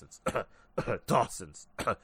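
Several short, rough bursts of coughing and throat clearing come in quick succession, fairly loud, with brief pauses between them.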